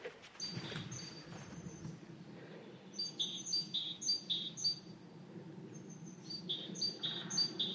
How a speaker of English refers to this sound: It's a great tit and a great spotted woodpecker.